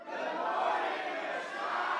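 A church audience at Church on the Rock screams and cheers loudly in one sustained roar as a greeting, a dense wash of many voices holding steady for about two seconds without a break.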